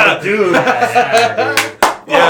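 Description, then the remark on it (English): Two sharp hand claps imitating the clap scene from a horror movie ring out close together near the end, preceded by murmured, laughing voices that keep going underneath. “The clap scene.”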